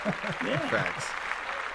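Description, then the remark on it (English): Steady applause for the jaguars fills the short moment, a dense wash of clapping with excited voices whooping and cheering over it before it settles back down. “So, let's clap that up for the jaguars.”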